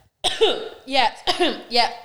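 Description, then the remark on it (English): Four short, voiced coughing bursts in a quick uneven series, fairly loud, sounding like a person putting on exaggerated coughs rather than a natural fit. “Sorry, I've got a cough.”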